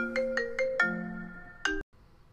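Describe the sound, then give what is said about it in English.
A bright electronic ringtone melody from a MacBook laptop signalling an incoming phone call plays alone, a quick series of chiming tones followed by a sustained note, then a final rising chime that cuts off abruptly into quiet. “Yeah, my MacBook was ringing off this.”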